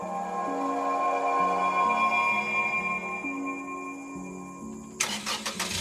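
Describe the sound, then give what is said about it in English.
A truck engine turns over and settles into a loud, steady rumble whose pitch steps up and down, then a sharp mechanical clunk cuts in near the end, as the truck sets off back to the city. No one speaks. “Well, I think it's about time that we hopped back in the truck and headed back to the city.”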